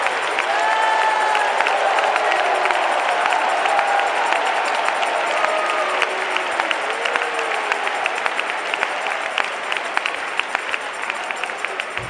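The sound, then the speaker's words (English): A large audience claps and shouts together in a sustained, loud burst of applause, with scattered whoops and cheers rising above the dense, steady clapping throughout. “I think you ought to get on your feet and clap your hands and shout.”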